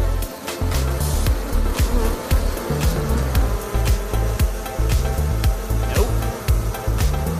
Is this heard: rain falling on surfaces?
no